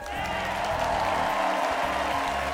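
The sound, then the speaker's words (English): A crowd in Los Angeles applauds and cheers steadily as comedian Jordan Rock is brought to the stage, a dense wash of clapping with whoops and shouts mixed in, loud and sustained throughout with no break. “Ladies and gentlemen, a big round of applause for Mr. Jordan Rock.”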